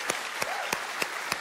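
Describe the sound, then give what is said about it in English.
A church crowd applauds and cheers for the Waterbury campus, a steady wash of clapping with five sharp, evenly spaced claps standing out in a regular rhythm, moderately loud. “Let's give a cheer.”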